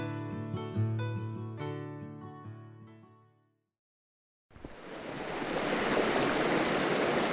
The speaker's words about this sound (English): It's only a little after sunrise. Cold. Early autumn by a rushing river. Cold. We sit in the truck next to Los Pinos River, watching the mountainside on the other side.